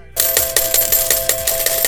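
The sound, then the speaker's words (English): Coins clatter steadily into the tray of a one-armed bandit slot machine in Las Vegas, a quick, even run of bright metallic clinks over a ringing tone, loud, with no talking. “Find out where to drop some coins into the one-armed bandit.”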